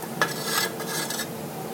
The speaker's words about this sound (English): Now, I'm taking this pan on the back of the burner where I had my water, salt, and sugar. And I'm going to pour it in here. Pour it in this bowl.